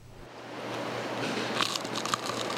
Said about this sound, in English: With one bite, this fried lizard fish crackles in the mouth, its rich and chewy flesh melting inside the crunchy batter. This is the famous Huocheng noodles at a Tainan noodle shop of more than 60 years standing.